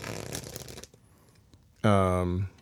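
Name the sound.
playing cards being shuffled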